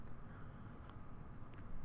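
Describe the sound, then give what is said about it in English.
A quiet sip of coffee from a cup, with soft wet mouth and swallowing noises over a low background hum; no one speaks. “And this is when I sip my coffee.”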